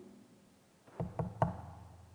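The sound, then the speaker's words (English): Three quick knocks on a door, evenly spaced, sounding alone against a quiet background with no voices. “He stands at the door of your heart, of my heart, and he knocks.”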